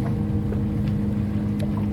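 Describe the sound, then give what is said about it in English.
A boat engine drones steadily, a low rumbling hum with choppy water slapping and rushing against the hull throughout, plus some wind buffeting. “All you can hear is the boat ponders.”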